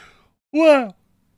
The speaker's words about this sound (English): Wow, that's a big yawn. Wake up, buddy.